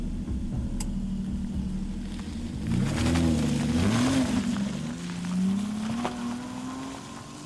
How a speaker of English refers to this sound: Once my childhood home was reduced to nothing but a charred heap, I turned on my car and started my journey back to the mainland.